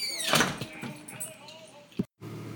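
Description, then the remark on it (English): A front door is opened as someone enters their home, with a brief rattling scrape and faint squeaky tones, followed by a soft thump about two seconds in before the sound cuts off briefly. “I'm at the front door. Let's go inside.”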